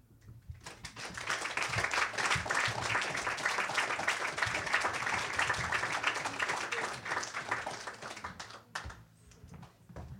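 An audience breaks into steady applause, a dense crackle of many hands clapping that holds strong for several seconds before thinning out toward the end.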